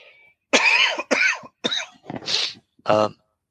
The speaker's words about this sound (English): And then I need to cough again.